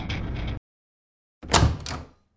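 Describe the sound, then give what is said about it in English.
A door swings open with a muffled creak and rattle, then after a brief pause a louder knocking thud as it bumps to a stop, with no voices. “Moments later, the door swung open.”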